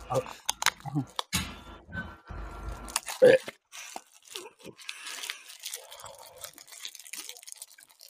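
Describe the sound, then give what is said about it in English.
Someone chewing on a Pokemon card: a run of irregular, dry crunching and tearing bites, loud in bursts and then softer, with faint voice sounds in the background. “Oh, he's eating a Pokemon card.”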